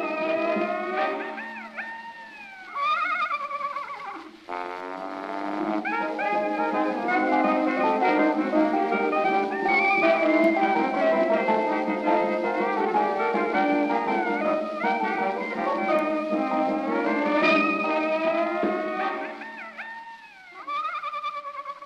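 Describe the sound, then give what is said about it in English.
An early jazz novelty record: a dense, lively ensemble with exaggerated sliding, whinnying and howling instrumental effects breaking in between phrases, loud and steady throughout with no talking. “It's a real novelty tune, you know. Lots of sound effects and lots of exaggerated tones, and it's really kind of silly, but it's also subversive for its day, you know.”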